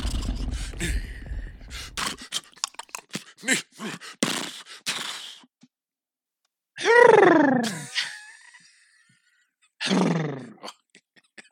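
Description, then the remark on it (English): A person mimics a coyote, letting out two loud, wavering howls with a pause between them, preceded by a burst of clattering, scuffling noises. “So clearly I can do a better coyote call than I can a horse call.”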